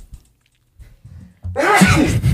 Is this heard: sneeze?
yes